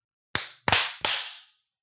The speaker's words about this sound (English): Clapped really hard on that one, but yeah, I kind of got out of control. Went too hard.